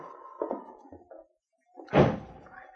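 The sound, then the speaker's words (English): A door is shut firmly with a single loud thud as someone leaves, after a moment of quiet, preceded by softer shuffling and handle sounds. No one speaks. “You better lock this door after I leave.”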